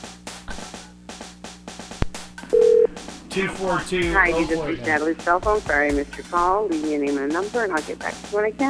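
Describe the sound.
A run of short electronic keypad beeps as a cell phone number is dialed to call a woman, with a brief steady tone at the end, then a voice starts talking over a faint background hum.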